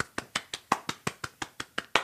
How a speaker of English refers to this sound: You can give yourself a pat on the back. And maybe a round of applause.